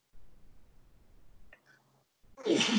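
A single loud sneeze bursts out at the end, preceded by a soft, muffled intake of breath and low background rumble. No talking.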